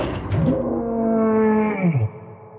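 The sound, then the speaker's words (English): A monster howls from beyond a door: a deep, drawn-out howl that opens with a rough growl, holds a steady moaning tone for about two seconds, then bends upward and drops off abruptly. It is loud and alone, with no talking. “As if daring her to go on, the monster howled from beyond the door.”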